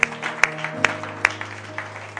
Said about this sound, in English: Let's clap our hands and give the Lord thanks. Can we do that?